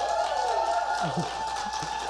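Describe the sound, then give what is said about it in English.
An audience at an event on animal advocacy during the holiday season applauds with dense, steady clapping that holds at an even loudness for the whole two seconds, along with a faint sustained whine and some scattered crowd voices. “let's do that by applause for the audio medium upon which we're embarking.”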